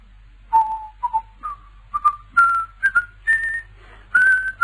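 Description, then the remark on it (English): A person whistles a slow melody, a series of clear sustained notes stepping gradually higher in pitch, with no talking alongside. “Yes, he was whistling. Sky Boat Song. Catchy tune, isn't it?”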